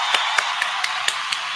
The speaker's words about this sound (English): So now y'all give a round of applause for Premier Cocktails.